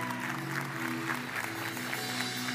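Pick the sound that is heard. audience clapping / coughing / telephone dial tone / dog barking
audience clapping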